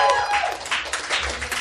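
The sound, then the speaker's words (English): An audience applauds in a dense, steady wash of clapping that holds at a fairly even loudness throughout, with a brief high whistle or cheer rising near the start, as a comedy show audience votes for a performer by applause in an applause-o-meter contest. “So it sounds like for the applause-o-meter, the Skewer goes to Allie Domeier.”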